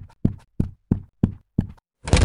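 Five firm, evenly spaced, solid knocks on a wooden front door, with no one talking, then a sudden burst of broad rushing noise at the very end.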